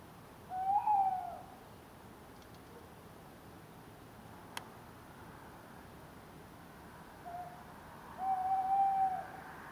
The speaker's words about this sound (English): Sound of the week this week comes from me in my garden. This week I've had the pleasure of listening to some owls. On Monday night, I recorded this sound of a male tawny owl.